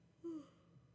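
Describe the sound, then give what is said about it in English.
A single short, soft yawn from a sleepy speaker, a brief breathy vocal sound with a faint tonal hum that fades quickly, over a quiet hush with no talking. “Sorry, I had to yawn.”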